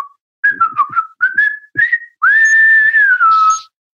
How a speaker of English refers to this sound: So are you going to whistle, or should we move on? Because it was... Whoa.